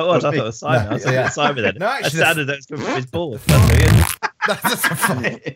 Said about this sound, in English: That sounds like a Diet Coke burp, to be fair. That does sound like a Diet Coke. A lot of air in that. A lot of air in that.